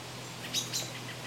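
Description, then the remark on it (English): An American robin on Grannis Island gives two quick, high chirping notes in close succession, faint over a soft outdoor background hiss, with no one talking. “That was a robin. That's the robin.”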